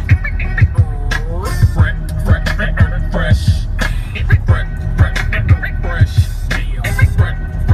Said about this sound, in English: Right about now, you are listening to the incredible drum patterns